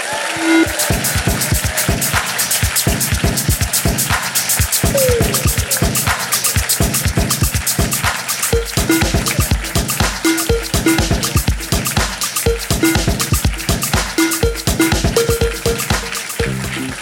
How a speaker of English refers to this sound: Big applause, please.